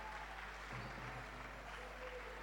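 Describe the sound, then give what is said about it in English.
An audience claps steadily throughout, a dense wash of many hands with no pauses, fairly loud and continuous, with faint crowd murmur underneath. “Oh, continue with the clapping.”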